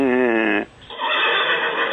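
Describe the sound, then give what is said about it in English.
A horse whinnies loudly, its tone wavering in a quick tremolo before it breaks off, followed by a breathy, noisy continuation of the call. “Or you can get this characteristic tremolo, you know, what you get in a whinny.”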